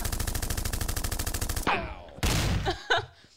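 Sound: gunshot sound effect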